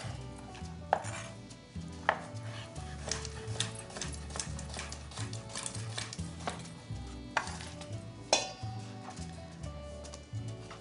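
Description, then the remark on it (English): A knife chops through a red bell pepper on a cutting board in quick, uneven taps, with a few sharper, louder strikes standing out over a steady low tonal background. No one speaks. “So we'll cut the red bell pepper.”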